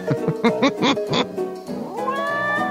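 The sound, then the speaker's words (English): A cat meows in a quick run of four or five short, rising-and-falling calls, then lets out one longer, drawn-out meow. It sounds clear, with no talking. “Ooh, this is the kitty time”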